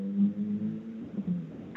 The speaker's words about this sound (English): He said go hard, and we got the badoing. That was right? Perfect. The badoing.